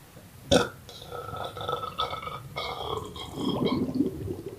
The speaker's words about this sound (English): Did you hear that bubbling there? That is not normal.